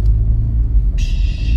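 A heavy truck rumbles past, a loud, steady low-pitched drone, with a bright hissing noise cutting in about halfway through and continuing to the end. No one speaks.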